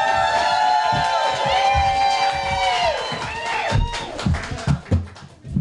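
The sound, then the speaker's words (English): A live show audience cheers and whoops loudly as the hostess is introduced, with many overlapping high-pitched shouts and whistles sustained throughout, then breaking into scattered louder yells and claps toward the end. “Y'all make some noise”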